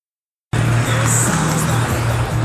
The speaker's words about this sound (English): Okay, we're out here at Middle Country Road, right in Lake Grove. And as you can hear, as cars are going by, I got a tremendous amount of vehicles with Trump flags and American flags beeping their horn.